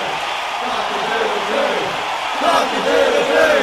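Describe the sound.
A large concert crowd cheers in a dense, continuous roar, individual shouts and whoops rising out of the wash of voices, swelling a little louder toward the end.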